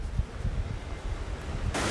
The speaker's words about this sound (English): Now I'm standing in front of the Trevi Fountain. It's amazing to see it like this.